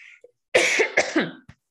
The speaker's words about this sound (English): You weren't the only one coughing.